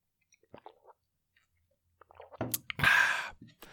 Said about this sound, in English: Let me just get comfortable. I'm just moving my things around. I'll have a sip of water as well.